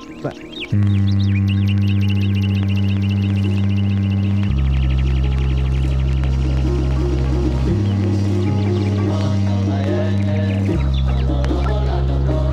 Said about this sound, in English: You hear that sort of like foghorn thing? It's like an oud or something. It actually is so low that when I was listening to it on my AirPods walking around, it was like making them flutter and make annoying sounds.